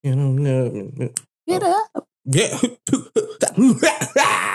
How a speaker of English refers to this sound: See that? Got me started. Got you started back coughing. Too. I know. Got me coughing and crap.